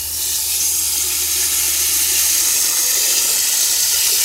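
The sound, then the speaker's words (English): Steady rushing water pours continuously, a broad hissing stream with no pauses, as warm to hot water fills a pot to cover plant material for making dye. “Now I'm going to fill the pot with ideally some warm to hot water, and I'm just going to cover the plant material because I like to make my dyes really saturated at first.”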